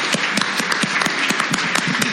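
A round of applause from a crowd for a departing panel guest, dense and steady clapping with sharper individual claps popping out irregularly, fairly loud throughout with no voices over it.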